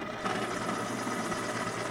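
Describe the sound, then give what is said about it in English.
A steady motorized whir with a dense, grinding buzz from an electric pencil sharpener sharpening a pencil used for taking notes, holding an even loudness for about two seconds with no talking. “That was my pencil sharpener. Did you hear it?”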